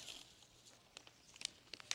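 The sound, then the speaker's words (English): Wrapping paper crinkles and rustles in a quiet scatter of soft crackles, with a few sharper crisp snaps toward the end as the gift is unwrapped. “And today you have such beautiful wrapping paper and ribbons that it's, to me, it always seems such a shame to undo them.”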